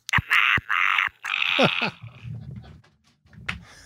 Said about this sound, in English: I have a whole accoutrement of fart machines. That's a fart gun from Minions in here. It's a fart in a can, but it sounds like a little gremlin growl.